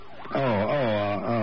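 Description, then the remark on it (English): An ambulance siren wails steadily, a buzzy, harmonic-rich tone whose pitch wavers up and down with two brief dips, fairly loud and with no voices over it. “Sounds like the ambulance now.”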